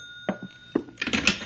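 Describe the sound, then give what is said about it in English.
A telephone rings with a steady, high-pitched tone, interrupted by a few sharp clunks and knocks before a burst of rustling clatter takes over. “That ringing noise is back in my skull. You're a ham bone. That's the telephone.”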